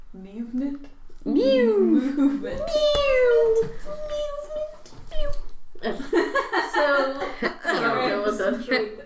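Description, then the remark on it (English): A person voices a series of squeaky, chattering animal-like noises, mimicking a cat crossed with a squirrel, with rising and falling pitched calls, then a burst of laughing chatter near the end. “I have weird ears and I was making like a squirrel noise.”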